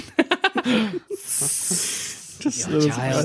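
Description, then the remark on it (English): A person imitates a snake with a long, steady hiss lasting about a second, fairly loud, bracketed by quick bursts of speech before and after. “Like, snake.”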